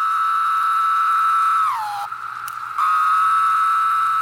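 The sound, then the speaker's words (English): A chorus of Linnaeus's 17-year cicadas, recorded by Lang Elliott and Will Hershberger for the book The Songs of the Insects, makes a loud, steady, buzzy drone. Partway through it slides lower in pitch and drops out for a moment, then returns at full strength. “Linnaeus's cicadas have big wings, black bodies, and red eyes.”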